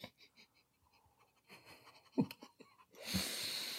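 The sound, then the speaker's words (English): Several short, quick sniffs of sweet wine in glasses during a wine taste test, followed by faint clinks and shuffling, then a longer, steady airy inhale rising at the end. No one speaks. “Y'all stop sniffing it.”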